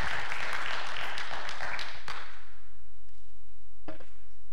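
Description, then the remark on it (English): A crowd applauds with dense, steady clapping for about two seconds, then it quickly dies away, leaving quiet broken by a couple of last stray claps. “And so, one more time, let's give him a warm, I don't want to say welcome, but hand of applause for one of our own”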